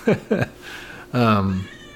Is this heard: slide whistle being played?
no